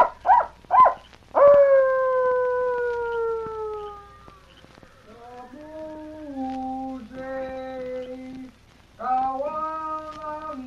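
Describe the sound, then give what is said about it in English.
A few sharp yips give way to long, wavering coyote howls that slide downward, repeated several times with brief gaps, fairly loud, with no talking; a coyote signal given by Tonto near Madrigo's camp around midnight, answered with more coyote calls. “Coyote signal? Yes, go on. Him answer, you see. He give more coyote talk.”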